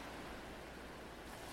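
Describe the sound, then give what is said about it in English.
Gently lapping waves make a soft, steady wash of water noise, quiet and even throughout with no distinct breaks, heard alone without any voices. “I nestled into my blanket, closed my eyes, and let the sounds of the gently lapping waves drift over me.”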